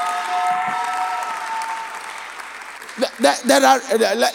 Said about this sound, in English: Oh, somebody give God a clap offering.